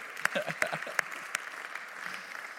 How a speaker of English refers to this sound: We can give that a round of applause.